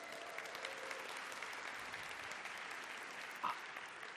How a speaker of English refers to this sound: Can you give that person a round of applause?